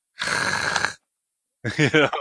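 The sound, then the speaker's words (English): A person imitates heavy mouth breathing: one long, loud, rasping exhale. After a short silence comes a brief voiced, talk-like sound. “Just no fucking mouth breathing if you're sitting in the corner. All right, I don't want to hear you go.”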